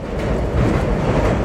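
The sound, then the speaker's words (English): A steady, loud rumble of a train rolling along the rails, a dense low roar with a faint rattling texture that continues evenly throughout, with no voices. “the next morning, Baruch got on a train to go find a job where he would work on Shabbos.”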